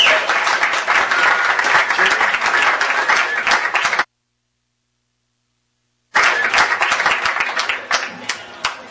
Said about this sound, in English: All here, a big round of applause.